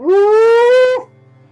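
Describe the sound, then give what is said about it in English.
A single loud wolf howl holds a steady, slowly rising tone for about a second, then breaks off abruptly, leaving only a faint low hum. “You hear, is that the howling of wolves?”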